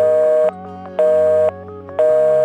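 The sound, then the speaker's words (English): A telephone busy signal, as heard by a caller when the phone line is in use for dial-up internet: a steady electronic tone pulsing on and off in even half-second bursts, repeating several times, loud over a faint low hum. “And if people tried to call you on the phone while you were using it for the internet, they'd hear this.”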